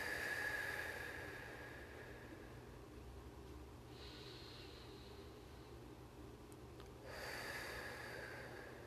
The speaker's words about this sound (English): You can listen to this breathing as many times as you want, on repeat for as long as you need. Just keep breathing in and out